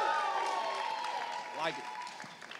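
A live audience applauds, a dense, steady wash of clapping that holds at a fairly even level for a couple of seconds and thins slightly toward the end, with some faint tonal sound underneath.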